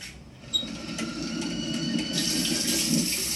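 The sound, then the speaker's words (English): A faucet runs steadily, water splashing into a sink with a broad hiss that grows a bit louder and brighter partway through, with no voices. “Member of American Home Shield, which means this faucet may be freaking out, but I'm not.”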